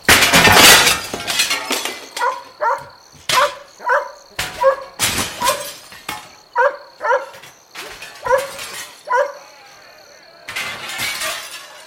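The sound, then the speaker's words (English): A dog, Effie, barks frantically and repeatedly, loud, amid sharp crashing noises like breaking glass, with bursts of commotion in between. “I'm woken by Effie's demented barking.”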